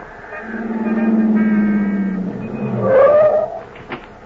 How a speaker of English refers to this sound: But she disappears into a waiting car and drives off.